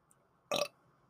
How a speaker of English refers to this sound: Sorry. Ooh. Grab that pop burp and it burns your inside of your nose. You're like, ah! It's like you just snorted a line of alien blood.